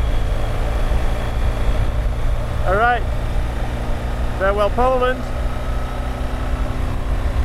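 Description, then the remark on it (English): Strong wind blows across a bridge separating Germany and Poland in a steady, loud, low roar that buffets without pause, while a man speaks a few brief words over it. “All right, I don't even know if you'll be able to hear me over the sound of the wind.”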